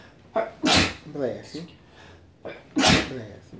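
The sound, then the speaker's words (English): Two sharp, loud sneezes about two seconds apart, each starting with a quick breath in before the explosive burst, with a brief voiced sound between them. “Bless you. Always in multiples.”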